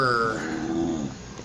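A dog growls in a low, continuous rumble for about a second and a half, steady with a slight whiny edge, with no other sounds around it.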